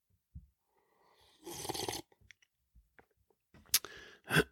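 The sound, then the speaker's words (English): Someone sips hot Freedom Hill Coffee, a deep, dark roast, with a loud, airy slurp lasting about half a second, then a few soft clicks and swallows, ending in two more short, sharp slurping breaths. No one speaks. “Before we get rolling today, I need to take a sip of my preferred beverage.”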